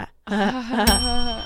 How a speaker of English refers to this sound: Joke bell.